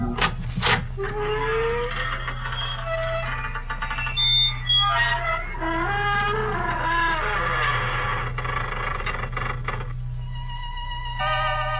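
A door creaks open slowly with a long series of loud, groaning squeals that bend up and down in pitch, over a steady low hum, then gives way to sustained organ tones.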